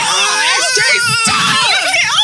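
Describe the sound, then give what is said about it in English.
A woman lets out a loud, high-pitched scream of disgust, shrill and wavering, sustained for about two seconds with rising and falling pitch, alone. “I promise I'd actually stop screaming today as well.”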